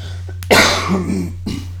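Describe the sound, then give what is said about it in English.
A harsh cough bursts out loudly, followed a moment later by a shorter second cough, with a steady low electrical hum running underneath throughout. “Because goddamn, this fucking coughing's annoying as fuck.”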